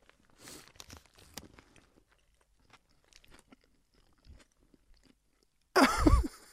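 Crunchy nacho chips being chewed with scattered crisp crackles and bites, quiet at first, then a sudden loud burst of crunching and rustling near the end; no one speaks.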